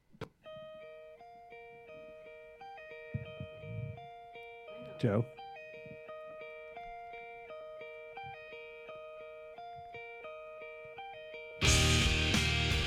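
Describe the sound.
A clean, bright guitar melody picks out steady repeating notes while voices talk briefly over it, then loud, distorted rock guitars crash in for the final second.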